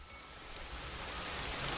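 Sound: rain falling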